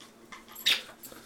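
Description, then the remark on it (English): A female dog squeaks her favorite squeaky toy ball: one sharp, high-pitched squeak stands out, with a couple of fainter squeaks before and after. No one talks. “You had to find your squeaking ball now?”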